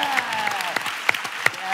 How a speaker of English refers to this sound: How are you doing? Oh, I love that boy. Stand up and let us clap for you. Go on, man.